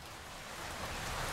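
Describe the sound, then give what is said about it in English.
Steady rain falling, a dense, even hiss of drops that swells slightly louder toward the end, heard on its own with no voices. “Next one is rain.”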